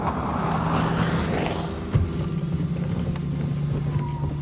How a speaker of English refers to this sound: Eventually, a car pulled up.